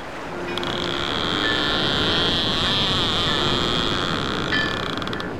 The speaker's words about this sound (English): Wait, do I hear a sound? Well, wait a minute. Yeah, you should hear a sound of the boats in the distance and the reel and the buoy.